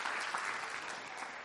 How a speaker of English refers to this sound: So I think we should just give a preemptive applause because we're all super excited about that.